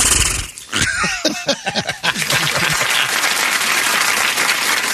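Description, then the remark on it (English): A large crowd at CUNY reacts with a sudden burst of overlapping gasps and vocal exclamations, quickly swelling into a loud, sustained roar of noise and applause that fills the rest of the moment. “That's a CUNY gasp, by the way.”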